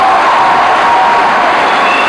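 A large crowd claps and cheers loudly and continuously as a clap of praise, a dense roar of applause and voices filling the space without pause.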